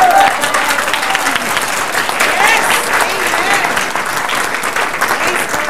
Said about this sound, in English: Clap, clap, clap, clap, clap for Jesus.